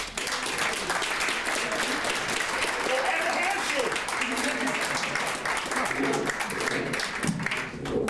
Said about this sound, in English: So, Shannon Phillips, MLA for Lethbridge West, a big round of applause.